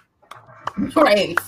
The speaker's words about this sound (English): Continuous clap, never ending. Yeah, that's so real. Round of applause.